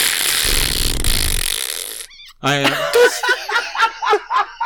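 A long, loud, rattling wet fart sound effect lasts about two seconds, then stops abruptly and gives way to laughter and chuckling in rhythmic bursts.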